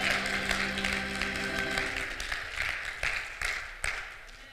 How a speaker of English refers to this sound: Clap your hands if you know I'm telling the truth.